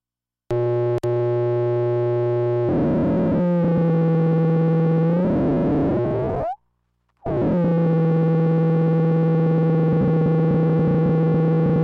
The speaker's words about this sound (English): So it's kind of an oscillator, but not really, because it's got these weird stuttery kind of sections.